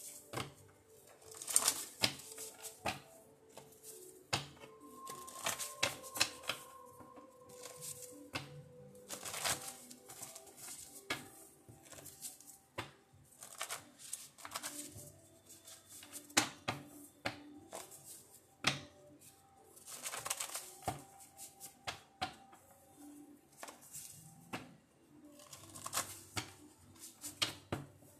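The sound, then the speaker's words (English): A deck of cards being shuffled before cards are drawn, with repeated crisp snaps and riffling bursts at an uneven pace, fairly quiet, with no talking throughout. “I'm going to shuffle while I do my prayer real quick, and then we're going to jump right into the message, all right?”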